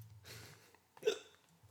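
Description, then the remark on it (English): A single sharp hiccup jolts out, preceded by a soft breathy intake, with a low hum underneath and no talking. “Is that a hiccup?”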